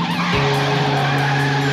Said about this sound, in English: driving a car at high speeds around an obstacle course.